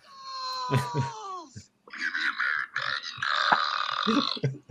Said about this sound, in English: I'll see if I can't find something that can top that because there's burps in Rocco's modern life. Yeah, we need to get more of those burps.